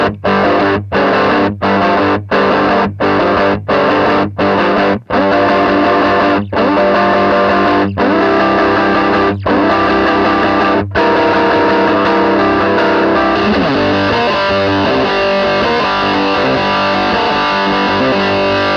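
Electric guitar played through an always-on Red Llama overdrive pedal, loud with no voices, starting with quick rhythmic chord stabs cut by sharp pauses, then settling into thick, sustained distorted chords.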